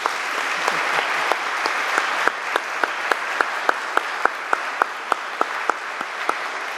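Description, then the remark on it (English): An audience at St. Mary's applauds steadily, a dense wash of clapping with a few sharper individual claps standing out in a loose rhythm throughout. No one speaks over it. “So I just want to give him a round of applause for that.”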